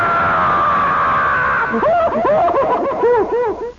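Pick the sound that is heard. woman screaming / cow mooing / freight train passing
woman screaming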